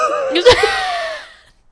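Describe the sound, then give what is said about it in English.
A single yawn: a sharp breathy intake, then a long voiced exhale whose pitch slides downward before fading out after about a second. “We just go back and forth yawn.”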